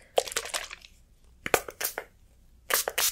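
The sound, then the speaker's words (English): A spray bottle mists hair in quick, hissy bursts, fired in three clusters of several squirts each with short pauses between, dampening the hair before it is combed and trimmed. No one speaks. “I'm gonna spray you down.”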